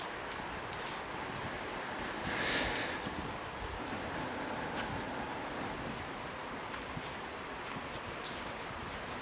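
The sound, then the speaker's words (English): A steady, broad rushing of river water flowing at night, a continuous wash of sound that swells slightly for a moment before settling back, with no voices present. “So I'm going to walk, hopefully you're there with me, towards the river.”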